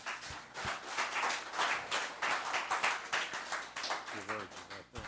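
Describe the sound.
An audience applauds a doctor who has just spoken, steadily for about five seconds, a dense, even wash of many hands clapping at once. A brief voice or cheer rises from the crowd near the end.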